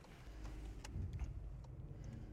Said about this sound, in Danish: Vi skal forbi Nørre Åby. Jeg sidder her i bilen, og jeg sidder med ham her.